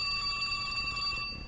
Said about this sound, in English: Here's the phone. I know it's going to ring, and I want to be ready when it does.